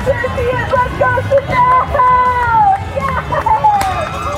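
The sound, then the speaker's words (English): A loud, continuous crowd of overlapping voices cheering and yelling, with sustained shouts rising above a dense babble, spectators along a marathon route through the hills of Harlem cheering on runners. “I think the best part, it's when your legs can't carry you anymore, and then the sound of the crowd carries you.”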